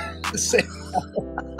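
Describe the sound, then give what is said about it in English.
A man coughs and clears his throat in a short, sputtering burst of several harsh hacks after choking on beer and spitting it out. “Spit my beer out. Goddamn, had a cough at this.”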